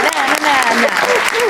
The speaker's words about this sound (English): Please give a round of applause for my amazing guests, Emma Freud and Catherine Ryan, everybody.